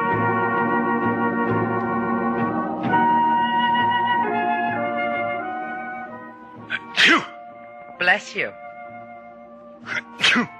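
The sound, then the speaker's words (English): Several sharp, loud sneezes burst out one after another from a man who has a cold after swimming in a cold ocean, following a stretch of someone talking in a steady voice. “Bless you.”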